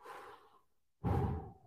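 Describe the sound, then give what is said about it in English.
Heavy breathing: a long, airy exhale fading out, a brief silence, then a sharp, loud inhale rushing in. No talking. “I am breathing heavily now.”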